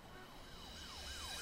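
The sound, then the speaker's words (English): A wailing emergency siren, part of a song being played, sweeps up and down in repeated rising and falling cycles, fairly loud over a low rumbling background, with no voices present. “Oh, sirens. Right off the bat.”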